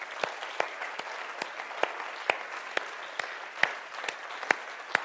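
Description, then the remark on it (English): An audience claps together for God, a dense wash of many hands with sharper individual claps popping out at a fairly steady rhythm, moderately loud and sustained throughout with no talking. “Can we give God a clap for what he's doing?”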